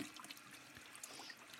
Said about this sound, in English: So I guess wait, what's that sound I hear? Is that the toilet flushing?